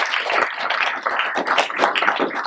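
An audience at a morning church service claps together to give God a hand clap, a dense, steady patter of many hands that holds at an even loudness throughout, with no voices standing out.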